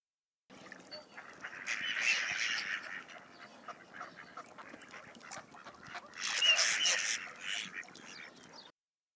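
A mallard duck quacks in a run of raspy, repeated calls, swelling into two louder bursts, fairly loud with no one talking.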